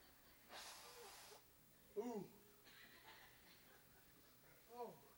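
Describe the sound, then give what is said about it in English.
A nose is blown once, a forceful hissing burst lasting under a second, followed by a couple of short voiced snorts or chuckles. “Just blow my nose real quick, huh?”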